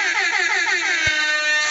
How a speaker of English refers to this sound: Come on, man, let me sound that alarm.